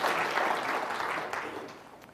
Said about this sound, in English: So you made it across. You're here this morning. And that ought to be worth an applause, right? We're here.